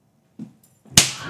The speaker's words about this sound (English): Oh my god, I can't believe you slapped him.